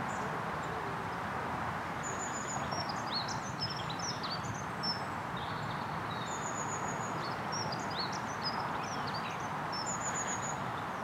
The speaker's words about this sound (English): A flock of redwings.